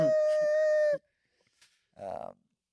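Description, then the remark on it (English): A car's tires squeal loudly as it launches off the line on a track, holding a steady, piercing pitch for about a second and cutting off abruptly. After a short quiet gap comes a brief muffled vocal sound. “That was my tires squealing on the.”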